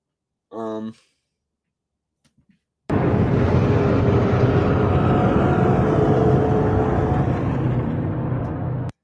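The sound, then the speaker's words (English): A reconstructed Pachyrhinosaurus call: after a short tonal grunt and a couple of faint clicks, a loud, deep, gravelly rumble rolls on steadily for about six seconds, like heavy snoring mixed with thunder. “Really does sound like a mixture of, how can I describe this? Someone snoring and thunder itself.”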